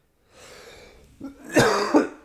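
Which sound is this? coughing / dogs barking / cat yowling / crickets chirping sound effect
coughing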